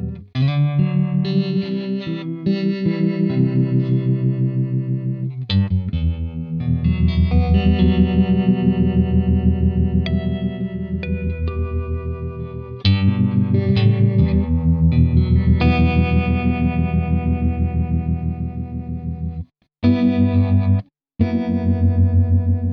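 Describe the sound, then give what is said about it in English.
An electric guitar played through a tremolo pedal plays sustained chords and notes with a warbling, flanger-like modulation swirling through the tone. It is loud and continuous, with two brief dropouts near the end and no voices. “It's got a bit of a kind of flangery warble to it.”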